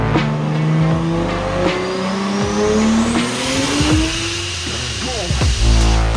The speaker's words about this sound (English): That car sound was sent in by Lucas. That is his, sounds like a 2JZ, right? Because that is, but it's in a very cool car. That is a 2JZ swapped RX-8, and I think that's super cool.